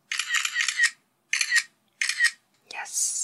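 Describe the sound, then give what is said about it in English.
Three crisp camera shutter clicks with the snap of an SLR mirror flipping up, spaced by short pauses, then a final sharp click that trails into a brief higher hiss. “But if nothing else, now, when you hear your phone making that shutter clicking noise, you'll think about how weird it is that they had to record the sound of a mirror flipping up to tell you that your picture took.”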